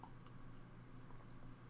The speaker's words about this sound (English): So, quickly have a drink of water.